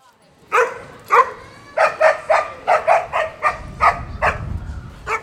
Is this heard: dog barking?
yes